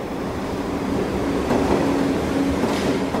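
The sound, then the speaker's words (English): A subway train rumbles past on the tracks, loud, a continuous roar of wheels and rails with a faint steady hum running through it, and no voices. “he lay atop the victim between the rails while the train passed over them”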